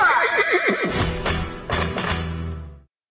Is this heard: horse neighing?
yes